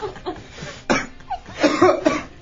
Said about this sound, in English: Why are you coughing?